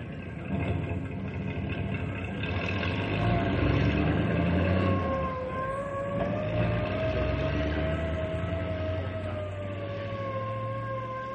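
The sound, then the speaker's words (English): A car drives away, its steady engine rumble holding fairly level while a high, wavering whine, like a siren, slides over it; no one speaks. “Everybody stays here until the car leaves.”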